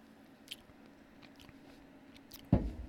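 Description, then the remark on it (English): Someone sips a fresh Dr. Pepper soda: faint wet clicks and smacks over a low hum, then one louder slurping gulp near the end. “I was taking a sip of some fresh Dr. Pepper.”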